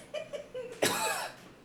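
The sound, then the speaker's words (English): A person gives a few short throaty hacks that lead into one sharp, forceful cough at another person, its breathy burst trailing off over about a second. “You coughing on me isn't going to change anything.”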